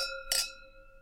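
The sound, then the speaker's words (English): Wine glasses holding a vegan red wine from Wolf Wine clink together in a toast, a single bright strike followed by a high, bell-like ring that slowly fades, with no voices. “So cheers, guys. Cheers.”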